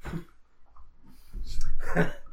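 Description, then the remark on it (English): A single sharp sneeze bursts out, a quick intake followed by an explosive, breathy release, with no talking around it. “Bless you.”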